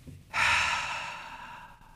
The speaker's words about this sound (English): Oof, I feel lightheaded. That deep breathing felt so good. Deep breathing has been a part of meditation for a long time as well.